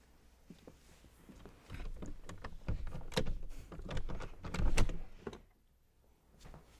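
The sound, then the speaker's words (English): A stuck door down a hallway is pushed open with a run of heavy wooden thumps and creaks, loud, building over a few seconds before a short pause and one last knock. “The door gets a bit stuck. You might need to really push your way in.”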